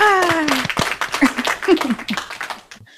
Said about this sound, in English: Congratulations. Cue the applause. Thank you.